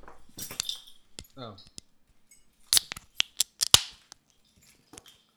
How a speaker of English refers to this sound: So here's a couple bottle openers. Yeah. And here we go. I guess we're going to open these up.